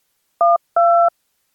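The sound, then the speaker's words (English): Two touch-tone telephone keypad beeps, a short one followed by a slightly longer one, each a steady, bright dual-pitched tone sounding alone against silence. “To finalize your episode, please use your touch tone telephone to indicate how many random sound effects you would like in the episode.”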